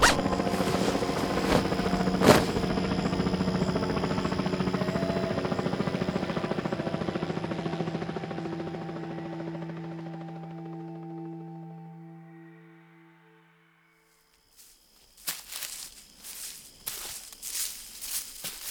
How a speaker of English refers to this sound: There's that helicopter again.